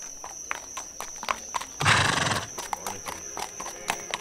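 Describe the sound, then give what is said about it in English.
A horse whinnies loudly in one strong burst, while hooves clip-clop in a steady, uneven rhythm before and after, with a faint high hum running underneath. “This damnable horse!”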